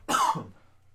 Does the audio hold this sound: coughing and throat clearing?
yes